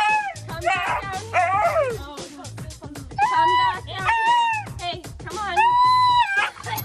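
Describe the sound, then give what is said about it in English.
A husky dog howls in a series of loud, drawn-out, wavering cries that rise and fall in pitch, with brief pauses between each howl, as it runs up a step to avoid being bathed with a shower and hose. “He runs up the step. He's howling. He wants no part of the shower and the hose.”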